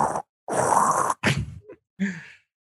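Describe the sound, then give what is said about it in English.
A voice imitates the crunchy, grinding sound of a giant marble person flexing, with several harsh, noisy mouth bursts, one long and scraping, followed by shorter clicky and gravelly bits, moderately loud with brief pauses between. “And it makes like that crunchy like marble moving sound too. Which I'm making with my mouth.”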